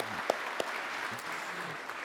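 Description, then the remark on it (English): An audience claps steadily for a couple of seconds in applause for the worship team that led the music at a worship gathering, a dense wash of many hands with a few sharper claps standing out, and faint voices murmur underneath. “Hey, can we just give them a round of applause real fast?”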